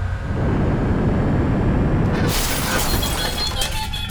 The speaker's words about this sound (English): Show us what this ship can do. Start and takeoff procedures. Engines online. Better buckle up. You're gonna need it.